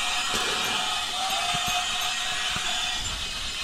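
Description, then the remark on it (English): A small toy train in a Christmas tree starts up again and runs steadily, its motor giving a continuous buzzing whir with a few soft clicks and thumps as it rolls along, fairly loud. “And there goes the train again.”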